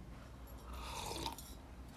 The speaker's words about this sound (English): Sorry, I need a sip of coffee here.